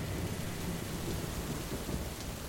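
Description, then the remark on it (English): Steady heavy rain pours down at night with a deep rumble of thunder rolling underneath, a dense, continuous storm wash with no voices. “Jalal Khumsia stepped out into the storm”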